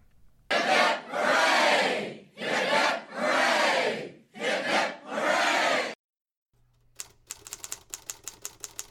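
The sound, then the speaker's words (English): A crowd of spectators roars three loud, sustained cheers for pedestrian Weston after his 326-mile walk, each a broad swelling shout. After a short silence, a rapid run of sharp typewriter clacks follows. “3 cheers were given for him.”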